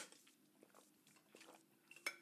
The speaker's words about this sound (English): I'm going to take a really quick sip of water here.